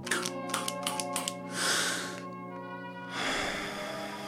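Several quick clicks and taps, then a sharp hissing puff of an asthma inhaler, followed by a long, steady breath drawn in. No talking.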